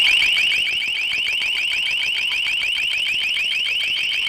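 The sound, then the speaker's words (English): A police LRAD warning tone: a piercing, high-pitched electronic wail that warbles rapidly and steadily, staying loud and unbroken throughout with no voices. “And that is the LRAD sound if you hear in your neighborhood a large police truck coming through your town with that sound.”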